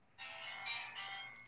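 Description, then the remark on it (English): A faint electronic phone ringtone plays in the background, a steady bright tonal melody that swells in a few short pulses, with no one talking. “Are you getting a phone call? No, that's just in the background.”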